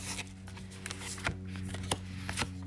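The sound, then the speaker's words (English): Cards being shuffled, a soft riffling rustle with several sharper snaps and flicks, over a faint steady low hum in the background. “One more second to shuffle, and looks like these are the three.”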